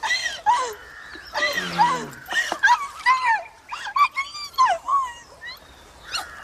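dog whimpering

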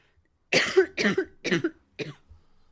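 wet cough

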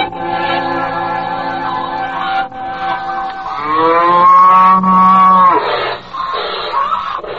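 cow mooing

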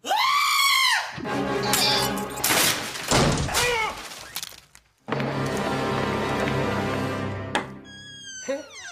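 goat screaming

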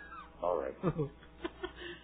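cat meowing loudly

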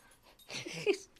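dog whimpering

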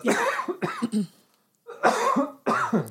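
cough

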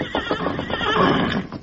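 horse neighing

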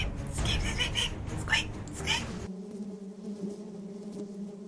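buzzing bees

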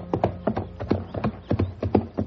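horse hooves clip-clopping

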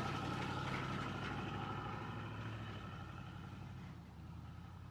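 car engine idling

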